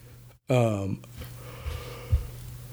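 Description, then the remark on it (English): A single short, loud yawn with a voiced, downward-sliding moan, after a brief silence. A steady low hum continues in the background. “I don't know why I yawn always during podcast.”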